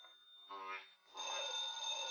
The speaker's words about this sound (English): Sounds like he's next to the phone. Oh! Was that the phone? He pulled it to the floor.